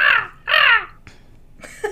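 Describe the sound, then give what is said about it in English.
Two loud, harsh crow-like caws in quick succession, followed by a short rising squawk: a person doing a crow impression rather than a real bird. “Ooh, this is the segment where we all do our crow impression.”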